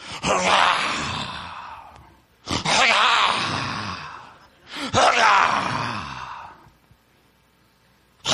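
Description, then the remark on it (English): A person imitates a hungry lion, starving and seeking food, with three long, loud, breathy roaring growls, each starting with a sharp attack and fading out, separated by brief pauses. “That's the lion walking into the situation, starving, seeking food.”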